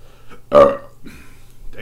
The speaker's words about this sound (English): Damn. You can tell that's a really hearty beer because it makes you burp and stuff. Like, usually a lot more fully bodied beers, you'll burp more.